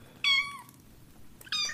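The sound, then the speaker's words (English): A newly acquired cat named Goldie meows twice, a drawn-out, wavering meow followed after a pause by a shorter one, clear over a quiet low background hum. “That's the new cat I got, Goldie.”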